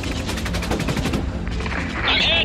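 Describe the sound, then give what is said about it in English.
Rapid, continuous bursts of thick anti-aircraft gunfire aimed at Panther jets making a run on a bridge rattle in a dense, rhythmic stream, loud and sharp, before a high, whining engine-like tone rises near the end. “the anti-aircraft fire was so thick it looked as if he could have climbed out of his jet”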